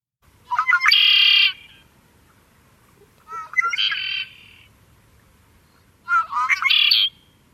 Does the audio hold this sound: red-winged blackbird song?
yes